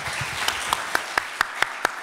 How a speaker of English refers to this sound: Can we have a round of applause for our book professionals?